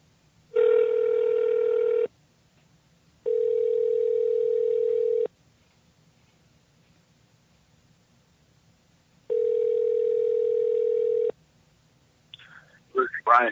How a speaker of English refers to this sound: All right, let's dial him up here from the HP studios.